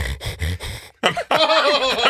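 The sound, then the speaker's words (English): A voice imitates snoring with four quick, rhythmic snorting breaths, then a short pause and a drawn-out, wavering vocal sound, fairly loud. “That's a really fast-paced snore.”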